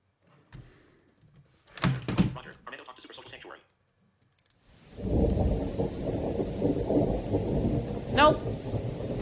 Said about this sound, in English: Nope. This storm is mean.